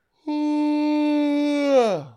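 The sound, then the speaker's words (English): A big, drawn-out yawn voiced as a steady, fairly loud tone that holds for over a second, then slides down in pitch as it trails off. No talking over it. “That was a big yawn.”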